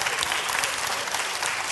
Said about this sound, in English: Well, I noticed how the clapping went way down on that one. First one was like, "Yeah, woo!" Second one was a golf clap.